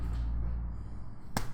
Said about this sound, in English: I hope the slap was picked up by the mic.